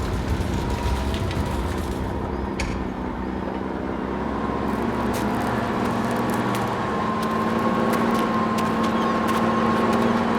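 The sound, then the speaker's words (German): A courier's car engine rumbles steadily as the vehicle rolls slowly forward through an opened gate, its hum rising slightly in pitch toward the end, with no voices. “Nicht aussteigen! Bleiben Sie in Ihrem Wagen, Sir.”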